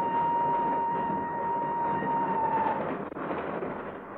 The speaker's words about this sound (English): Not until the train started to move from the platform.